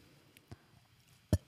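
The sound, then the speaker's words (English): A short, low burp pops out abruptly near the end, preceded by a fainter soft click, with otherwise quiet background and no talking. “Stop burping. That's not good broadcasting.”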